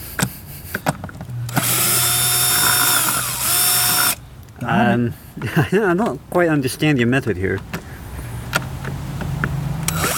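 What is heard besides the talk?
power drill running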